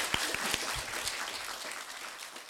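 An audience at an author reading at the Midtown Scholar Bookstore claps steadily, a dense wash of overlapping hand claps with a few sharper individual claps early on, holding fairly even before easing slightly toward the end.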